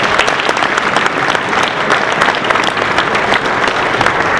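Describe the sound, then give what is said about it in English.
A crowd applauds an evangelist's ministry, dense overlapping claps forming a loud, even wash of sound that holds without pause from start to finish. “If you have enjoyed his ministry, bring your hands together.”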